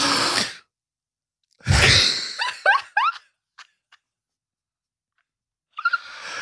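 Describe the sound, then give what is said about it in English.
A loud, breathy rush of air drawn in through the mouth, followed by a few short squeaky chirps and clicks, with another airy breath sound at the end. “What did you inhale?”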